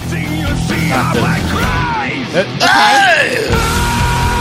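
A thrash metal vocalist lets out a loud, sustained scream over dense, distorted guitars and pounding drums, the wail rising and bending near the middle of the passage.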